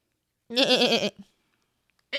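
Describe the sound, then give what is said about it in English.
A person imitates a goat, producing one loud, quavering bleat with a wobbling pitch, lasting about half a second, followed by a brief grunt and quiet. “I do a good goat and I do a good whale.”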